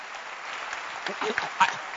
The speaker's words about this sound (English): Can you clap your hands?